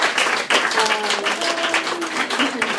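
At a storytelling show, a crowd applauds a storyteller after her first time there, with dense, steady clapping that fills the whole few seconds at an even, loud level, while a voice or two can be faintly heard underneath.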